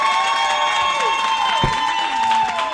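An audience applauding and cheering to vote for a contest winner, a steady, dense wash of clapping that holds loud for the whole stretch, with sustained whistle-like tones and a few sliding pitches riding on top.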